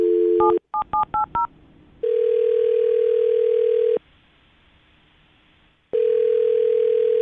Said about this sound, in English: So we're going to get him on the phone and see if we can find out why. I'm going to dial his phone number right now and see if he picks up, okay?